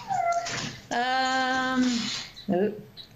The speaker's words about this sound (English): The bird is going crazy, sorry.